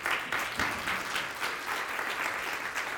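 A church audience claps for God together in sustained, dense applause, many hands beating at once with a lively, slightly rhythmic pulse that fills the space without any voices standing out.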